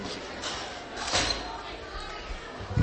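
A single dull thud of a microphone stand being knocked, fairly loud, rising briefly out of a steady background hiss with faint murmuring.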